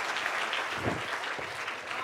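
An audience claps together in steady, dense applause that fills the whole moment, many hands at once, fairly loud and sustained without letup.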